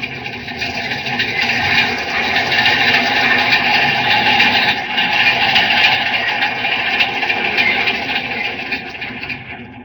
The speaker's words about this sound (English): There's one of our metropolitan trains coming into this tunnel.